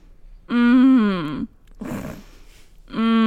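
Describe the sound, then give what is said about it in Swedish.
A person imitates the drawn-out, droning groan a sick man makes on each exhale in his sleep instead of snoring, followed by a breathy, noisy inhale, then the voiced groan starts again at the end. “Alltså istället för att snarka så på utandningen så gör han en röst så här.”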